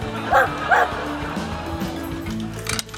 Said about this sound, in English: Oh, what a cute dog.